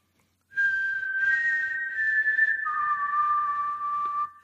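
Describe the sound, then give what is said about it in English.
A person whistles a short tune of long, steady notes, holding one pitch before stepping down to a lower one. It is clear and fairly loud, with no talking. “Whistling doesn't work so well on this setup.”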